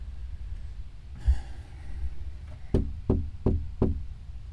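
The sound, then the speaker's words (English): Four firm knocks on a door or window of a house land in a quick, fairly even rhythm, each ringing briefly, preceded by a soft breath; someone knocks in case anyone is inside. “I still knock on the windows or the doors just in case someone's in there.”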